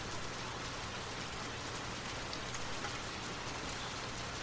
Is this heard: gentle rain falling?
yes